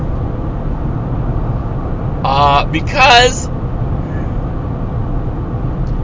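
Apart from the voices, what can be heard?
car interior noise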